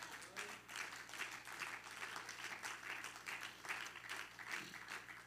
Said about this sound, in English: I appreciate your applause of agreement and approval, but we don't always practice that.